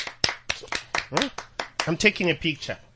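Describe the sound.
A series of sharp hand claps, fairly close and steady, about three or four per second, with someone talking over them throughout.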